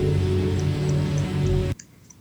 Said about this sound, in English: And then you hear a clock. Then you hear a clock.